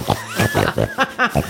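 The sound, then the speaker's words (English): A person voices Pinochle, a dragon that thinks he is a little pig, imitating a pig with a quick run of five or six snorty, grunting oinks in close succession. The oinks are fairly loud, with no other sounds around them. “Fair warning, Pinochle kind of thinks he's a little pig because we trained him so that he can find truffles and he hung out with pigs a lot.”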